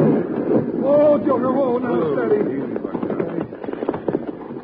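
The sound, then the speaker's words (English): A dynamite explosion tears through a building, Jingles Cafe, blowing it to pieces: a loud, sustained roaring rumble that breaks into scattered crackles and falling debris, with a voice calling out over the blast. “The whole building just come to pieces.”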